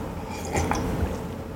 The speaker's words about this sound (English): I'm taking a sip here.